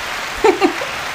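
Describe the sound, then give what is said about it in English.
A steady, even wash of many hands clapping, like a crowd's applause, with a couple of brief voiced calls rising over it midway. “What's all a whole lot of clapping?”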